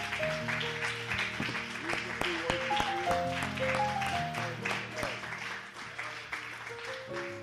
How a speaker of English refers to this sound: Would you clap your hands, and why don't we just praise him one more time here this morning?